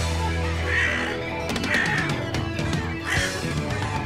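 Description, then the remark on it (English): A crow caws several times in harsh, rasping bursts, fairly loud, with a steady low hum running underneath. “Looks like this crow is about to attack us.”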